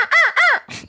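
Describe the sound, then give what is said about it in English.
A person gives two loud, rising-and-falling owl-like hoots in quick succession, imitating an owl with their voice, followed by a brief breathy rustle. “Ooh, well, I owl hoot as loud as I can”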